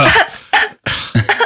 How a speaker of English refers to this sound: You know what? Maybe you're just hungry. Here we go. Who gets a cough when they're hungry?